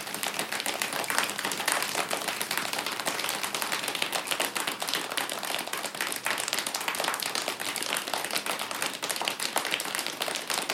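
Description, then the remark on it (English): A group imitates heavy rain with their hands as one stage of building up a thunderstorm: a dense, steady patter of many rapid claps and slaps, loud and even throughout, with no speaking. “Heavy rain.”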